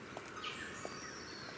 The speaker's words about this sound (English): Down in the forest, it's very still because the birds are just starting to wake up.